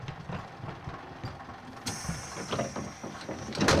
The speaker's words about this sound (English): The bus door closes and off they go.